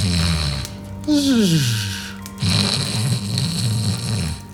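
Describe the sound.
A voice imitates an old man passed out and snoring: a low rumbling inhale, a falling whistled exhale, then a longer rattling, fluttering snore, fairly loud.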